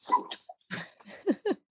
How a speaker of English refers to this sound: We apologize, guys. We have some weather going on here, and the dogs are a little freaked out.